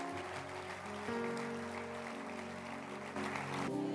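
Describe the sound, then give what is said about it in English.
An audience claps steadily for everyone at the end of an evening event, a dense, continuous wash of applause, with sustained musical tones held underneath and shifting pitch partway through. “It's been a very wonderful evening, and let's clap our hands for everyone.”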